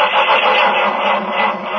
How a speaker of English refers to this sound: Our hero, Jim Brown, is in a frantic rush to get to his office. He leaps into his car, tries to start it.